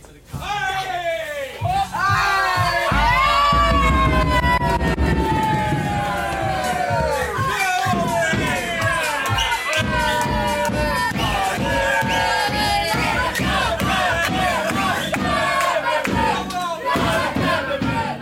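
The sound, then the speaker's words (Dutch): A group of young men, a team's players, erupts in loud, sustained cheering and shouting in a locker room as teammates swing the door open after a win, voices overlapping in whoops and yells that stay intense for the whole stretch, echoing. “Als ze daar de deur openzwaaien, worden ze met luid gejuich ontvangen door de spelersgroep.”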